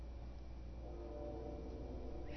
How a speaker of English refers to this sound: Can you hear that? We get the train whistle. Can you hear it?